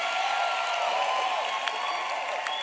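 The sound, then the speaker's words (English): An audience claps and cheers together after a call for an amen, clapping and excitement, a steady dense wash of applause with mixed voices rising through it, loud and sustained for a couple of seconds without any single clear speaker. “Can I have a good amen and some clapping and excitement?”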